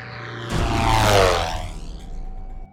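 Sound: plane taking off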